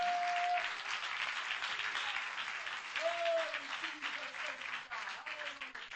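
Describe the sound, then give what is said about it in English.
An audience claps their hands to the Lord in sustained, dense applause that fills the whole stretch, with a few voices calling out and rising tones faintly audible beneath the clapping. “Clap your hands to the Lord if you believe what I'm saying right now.”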